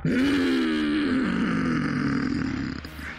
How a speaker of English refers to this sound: A muffled roar came up from behind the rocks.